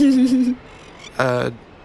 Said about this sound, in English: And so, like, Sal wades out to where the birds are, and you can kind of hear them making noises at each other. They must be talking, you think,